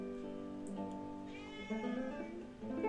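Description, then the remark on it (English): A cat meows in a drawn-out, wavering cry, rising and falling in pitch, moderately loud, with a steady low hum underneath and no one talking. “So, there's a cat meowing.”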